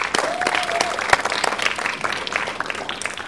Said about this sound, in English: So Red Box is sponsoring, as you heard, Teen Titans, and O'Neill Cinemas is sponsoring Guardians of the Galaxy. So big round of applause for all of them.